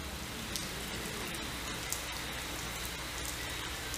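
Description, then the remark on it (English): Steady rain pours down, a continuous dense hiss of drops pattering on a surface with occasional slightly louder splashes, even in volume throughout, with no voices. “You want to get soothed? Listen to the sound of rain.”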